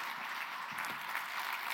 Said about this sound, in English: Hey, round of applause. Bigger than what you gave him on the way up. There you go.